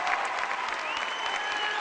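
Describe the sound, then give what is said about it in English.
Steady, dense applause from an audience honoring Alan DeWall, many hands clapping at once in a continuous wash of sound, fairly loud and sustained throughout, with faint crowd noise mixed in. “You're not clapping loud enough, it's Alan DeWall!”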